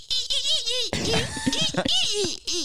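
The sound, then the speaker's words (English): A person imitates a dolphin with rapid high-pitched squeaks and warbling chirps, rising and falling in pitch, broken by a brief burst of clicking and laughter-like sounds. “I've been practicing my dolphin too. Do you want to hear it?”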